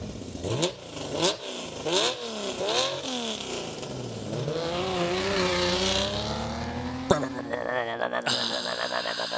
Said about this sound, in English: That car sounds good. I miss that car. Me too, but you know what the good part is? What's that? I still have that muffler in my garage.